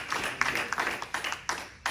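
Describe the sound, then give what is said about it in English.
An audience claps hands in a steady, dense patter of overlapping claps with sharper accents every half second or so, moderately loud and continuous through the whole stretch. “Let's clap your hands if you know that Lord can bring you out of that situation today.”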